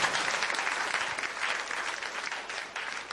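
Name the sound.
audience clapping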